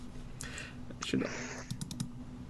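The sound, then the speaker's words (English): Quick, sharp computer mouse clicks, a few spaced out and then a rapid cluster near the end, fairly crisp over a low steady hum. “He's a click, click, click, click, click, click, click. Frantic clicking.”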